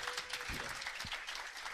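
A steady patter of applause from a small group, many hands clapping in a dense, even texture that holds at a moderate level throughout with no voices.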